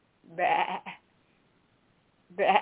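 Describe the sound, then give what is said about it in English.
A goat bleats twice, a wavering nasal cry followed by a short tail, then after a pause a second loud bleat begins, clear with no talking. “So that's what's happening with the peeping goat up in Chatham Township, New Jersey.”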